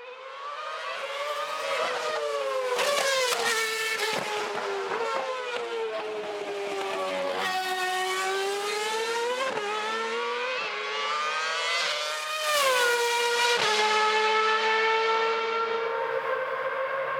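The engine of the 2011 Red Bull RB7 Formula One car howls loudly and continuously during demonstration laps at Mount Panorama, driven by Liam Lawson, its high-pitched scream rising and falling through repeated gear changes and revs, with no voices.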